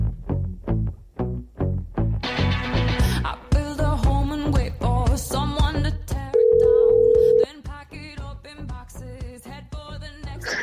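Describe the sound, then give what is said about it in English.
A telephone call effect: a steady phone tone sounds for about a second, clear and fairly loud, set within a punchy rhythmic music bed with no one talking. “Let's pick up the phone and give him a call.”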